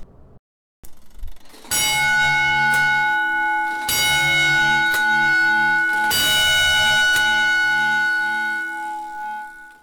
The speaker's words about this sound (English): And he's showing me what an alarm would sound like to firefighters around the 1940s.